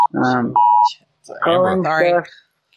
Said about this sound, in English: We all got an Amber alert at the same time.